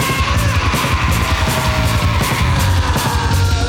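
A man screams hoarsely over a loud, distorted rock band, his raw yell sustained through the whole passage above heavy guitars and pounding drums.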